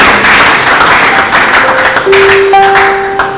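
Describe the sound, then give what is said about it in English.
An audience applauds its music ministers after their presentation in a dense, steady wash of clapping that holds for several seconds, while a couple of sustained keyboard-like tones enter beneath it toward the end. “So let's appreciate our music ministers for that very matured presentation.”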